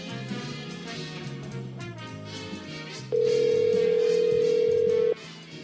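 phone call ringing

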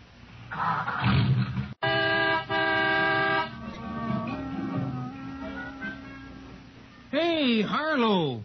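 car horn honking

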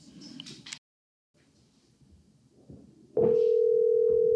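phone call dialing tone

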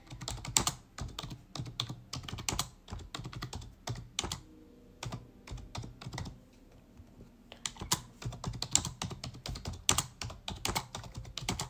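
keyboard typing clicks

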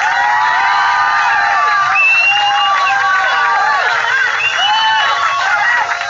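crowd cheering and applause

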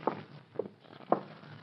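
footsteps approaching

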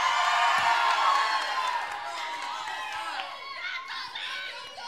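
audience cheering and whooping

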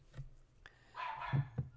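dog barking

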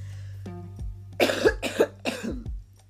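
coughing

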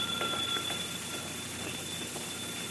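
telephone ringing

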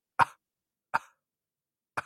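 coughing

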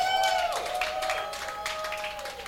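audience applause and clapping

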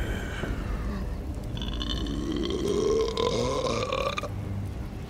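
man burping loudly

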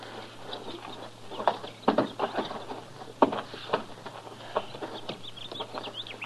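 horse hooves clip-clopping

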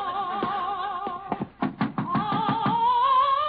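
knocking on a door

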